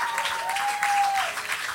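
A crowd applauding steadily, dense clapping at an even loudness throughout, with a faint sustained tone, like a held note, running beneath it.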